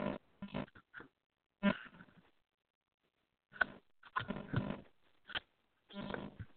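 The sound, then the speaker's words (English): Rustling and scraping of a loose microphone clip being tightened: irregular clusters of loud, rough handling noises broken by short silent pauses, with no one talking. “What is that rustling sound? No, it was my mic clip was loose and about to fall off, so it was tightening it up.”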